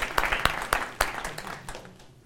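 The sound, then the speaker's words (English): A short burst of audience applause for a person being introduced: a handful of sharp, evenly spaced claps over a soft wash of clapping, thinning out and fading within about two seconds. Nobody speaks. “Round of applause.”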